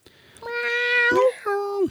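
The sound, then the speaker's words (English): Human voices imitate a cat, giving two drawn-out, nasal meows in quick succession. The first is long and wavering, the second is shorter and rises at the end. Both are fairly loud. “When we meow, we're about to start the show.”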